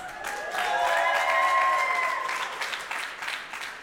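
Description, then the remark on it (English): An audience breaks into steady applause for the host introducing himself, a dense wash of many hands clapping together, with a few bright whistles and cheers riding on top before it tapers off. “You can clap for that.”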